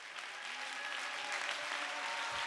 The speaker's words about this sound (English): And it's going to bring forth and I wish you would clap your hands like you believe it. Come I wish you would clap your hands like you believe it.